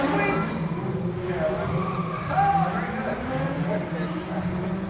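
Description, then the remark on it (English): A stunt car roars with a steady, loud engine drone, its tires briefly squealing as it skids while performing a reverse car takeover, while a crowd murmurs and voices carry faintly underneath. “The main car just did the reverse car takeover without missing a beat.”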